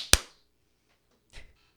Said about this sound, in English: It was like perfectly in sync in my ear, but like I clapped like 4 seconds later. It was a little bit off in my ear, and you didn't clap until I leaned back in the video.